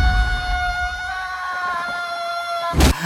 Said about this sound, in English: Now it's time for this week's Woman Screaming. Hit it.